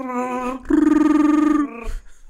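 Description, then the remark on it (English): A person does a single vocal imitation of Chewbacca's Wookiee roar for May the 4th: a steady, tonal opening that swells into a loud, rattling, warbling howl for about a second before breaking off. “All right, are we ready for for a Chewbacca in honor of May the 4th, one Chewbacca roar?”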